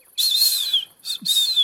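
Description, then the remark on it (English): A person whistles in imitation of a bird as an agreed signal that something is coming: a long high warbling note followed by a short chirp and another sustained trill, clear with no talking. “Okay, so I make a bird whistle that we agreed would mean something's coming.”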